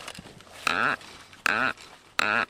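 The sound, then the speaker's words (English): A forester's hollow drill is turned into the trunk of a very old Sitka spruce on the outskirts of Juneau to extract a pencil-diameter core, giving three loud, high-pitched squeaks in a steady rhythm, each about a quarter second long and rising then falling, with short pauses between. “This is a forester's drill. It's hollow. We'll turn it into the tree and extract a pencil diameter core that we can look at the rings with.”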